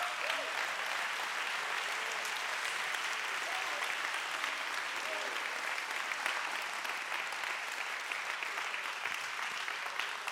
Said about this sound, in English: Somebody stand and give the Lord a hand clap of praise. Can you do that? Give the Lord a shout of praise.